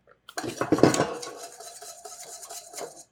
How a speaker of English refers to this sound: So with the spatula, I scrape the bottom. I keep my bottom clean. And with the whisk, I whisk. So I cut the lumps so that in the end it will be smooth. It's already thickening.